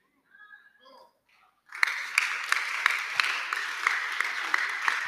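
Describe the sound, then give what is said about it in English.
A brief murmur of voice, then a crowd breaks into steady, thin applause that continues to the end, a scattered patter of many hands with a few sharper claps standing out. “The way you are clapping, it is very weak.”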